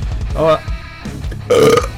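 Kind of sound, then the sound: human body sound, burp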